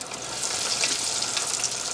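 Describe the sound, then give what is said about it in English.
Tempura-battered cauliflower florets, battered and dropped one at a time into a pot of hot oil, fry with a steady, dense crackling sizzle that stays fairly loud throughout, with no voices over it. “You don't want to make sure that when you're dropping stuff in oil that you get close to the oil so that it doesn't splash.”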